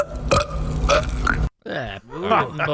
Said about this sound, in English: Now, for belch number one, I would use the word refresh, but it's that's not refreshing word. Or fresh mm-mm, at all. Mm-mm. Belch number one was